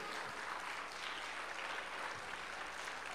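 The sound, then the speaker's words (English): An audience claps together, giving the Lord a hand clap of praise, in a steady, dense wash of applause that holds for the whole stretch, many hands blending into an even patter, with no one speaking over it. “Someone needs to give the Lord a hand clap of praise for that, I believe, today.”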